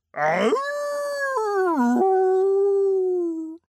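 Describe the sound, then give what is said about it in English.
A single long wolf howl comes from behind a tree. It rises quickly at the start, then holds a steady, mournful tone with a couple of small wavers for about three seconds before stopping abruptly. It is loud and alone. “That sounds a lot like the Big Bad Wolf.”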